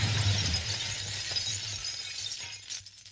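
glass shattering

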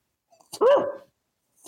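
dog barking and whimpering

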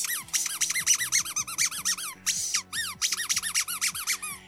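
duck quacking

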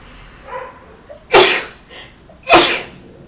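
sneeze

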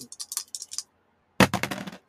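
dice being rolled

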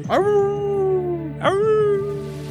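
wolf howl sound effect

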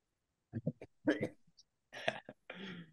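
coughing and throat clearing

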